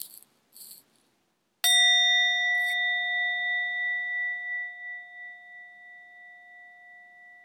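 A single meditation bell is struck, ringing out clear and loud, then sustaining a long, slowly fading resonant tone with a gentle wavering pulse. A few soft brushing sounds come just before the strike.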